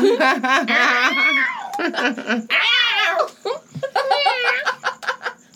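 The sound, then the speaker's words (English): A person imitates a cat, letting out several drawn-out, wavering meows in quick succession, loud, with giggling and laughter mixed in between the calls. “Meow, meow.”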